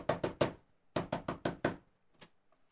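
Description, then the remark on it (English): A village peddler knocks firmly on a wooden house door late at night: a quick group of three raps, a short pause, then five more in steady rhythm, loud, followed by a faint extra tap. “Who's knocking on my door?”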